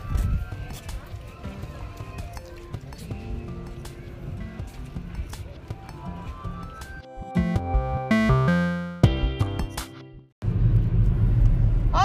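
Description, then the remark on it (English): A steady low rumble fills the inside of a moving car, with a brief stretch of tonal, harmonic sound over it near the end before the road noise returns. “Okay, we're in the car, we're on our way out.”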